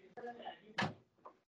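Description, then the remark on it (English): A door swings shut with one solid thud, followed by a softer knock. Muffled voices murmur in the background just before it closes. “Let me close the door.”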